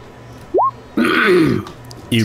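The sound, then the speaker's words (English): A voice fakes a gruff throat-clearing cough, fairly loud, after a short rising 'hm' and followed by a brief clipped vocal sound, as a role-play character glances toward a companion before searching a body and then says 'guidance'. “Before Burbage starts to search the body, he kind of glances toward Charity and kind of coughs and says, guidance.”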